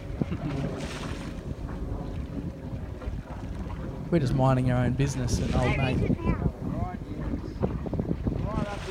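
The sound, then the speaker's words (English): Steady wind buffets the microphone over a broad, rushing wash of water and engine-like rumble from a boat out at sea, while people talk and exclaim excitedly at a humpback whale right at the back of the boat. “Right at the back of the boat.”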